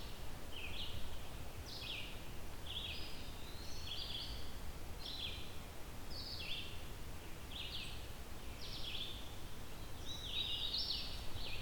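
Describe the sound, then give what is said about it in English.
A vireo sings short, repeated high phrases every second or so, with a warbler's song faintly mixed in, over a steady rushing outdoor background of wind and rustling. “Let's see if I can get a better angle where the vireo isn't as overpowering.”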